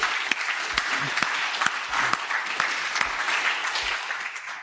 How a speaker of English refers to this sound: And so can we just give ourselves a round of applause this morning?